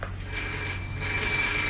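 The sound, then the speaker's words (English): A telephone bell rings steadily for a couple of seconds, a bright metallic trill over a low background hum, with no one speaking. “And there goes your telephone again.”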